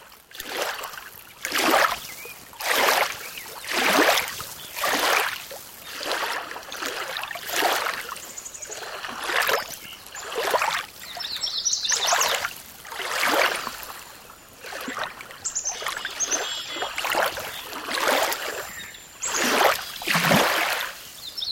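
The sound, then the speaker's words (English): Small waves driven by a light wind lap gently against the shore of a large lake, Quabbin Reservoir in Massachusetts, in the late morning, in a steady, repeating rhythm, each soft wash of water rising and receding every second or two, moderately loud, with no voices. “But before we go, a pause in the late morning along a large lake where a light wind provides the pulse for this recording of small waves against the shore.”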